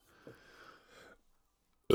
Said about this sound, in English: Your boy's burping. That was disgusting. Sorry.